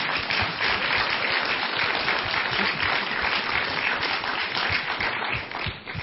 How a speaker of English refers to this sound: Before I do that, can we just give a round of applause to all the leaders and speakers and everybody who put this together? It was such a privilege.